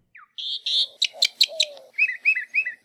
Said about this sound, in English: 90 years later, you can still find a few northern mockingbirds in the islands.